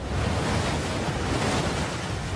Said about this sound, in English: The only thing you can see is the white of the pounding water on the rocks.